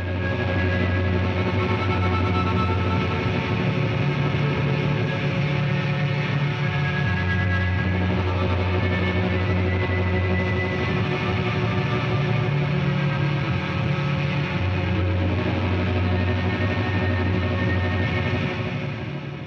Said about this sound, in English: spend nearly 40 minutes playing around with variables of feedback, reverb, delay, and pure noise.